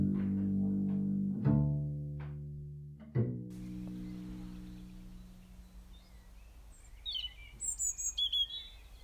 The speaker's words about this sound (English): I wake to the song of blackbird and an early morning robin picking from the seabed windscreen.